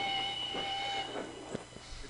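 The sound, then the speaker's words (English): A train's steam whistle sounds as a steady high tone over loud hissing steam, fading after about a second while the hiss and faint rumble continue. “It's so obviously the train's coming.”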